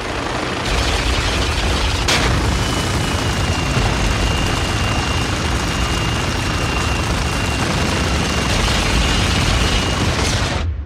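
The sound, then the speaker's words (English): A helicopter crash from a game trailer, the player's own helicopter going down during a helicopter battle in a storm: a loud, continuous roar of rumbling noise and engine whine, with a sharp crack early on and a thin high tone running through, no voices. “And then the helicopter crashes that you're in,”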